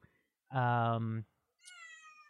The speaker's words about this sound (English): Oh, hello, kitty cat. Yeah. At first, when I first heard the meow, I thought it was my cats because my cats are like right outside the door.